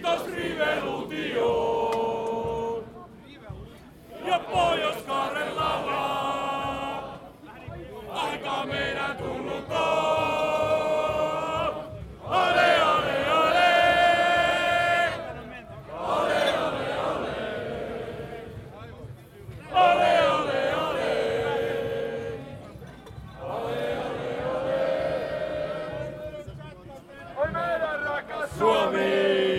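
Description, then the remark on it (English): A crowd of Finland national team (Huuhkajat) football fans sings loudly together while marching about 2 kilometres from the centre of Helsinki up to the Olympic Stadium, belting out repeated chant-like phrases a few seconds long with short breaks between them over a steady rumble of crowd noise. “let me interrupt your singing.”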